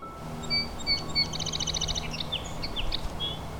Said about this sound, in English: The bouncy banter of the song sparrow.